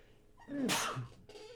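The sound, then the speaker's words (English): A person with a cold sneezes once, loudly, bursting out with a sharp breathy hiss, followed by a brief quiet tail of background noise. “Bless you there. I've got that little cold going on.”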